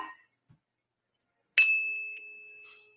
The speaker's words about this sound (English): Oh, let me ding my bell. I'm going to ring a bell.